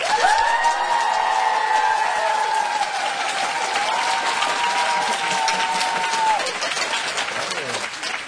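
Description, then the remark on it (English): A crowd bursts into loud, sustained applause with cheering and high-pitched whoops at a poet's request while being filmed for a video, dense clapping filling the whole stretch before easing slightly near the end. “So I want to take a video, and I'm going to ask everyone to cheer and clap loudly.”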